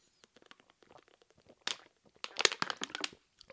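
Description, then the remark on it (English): A plastic water bottle crinkles and crackles in a string of sharp, irregular pops, with a louder burst of crunching partway through as it is squeezed on purpose to be loud while drinking water. No one speaks. “Wanted to make sure to make the bottle kind of loud that time, so you guys didn't think I was fake drinking or something.”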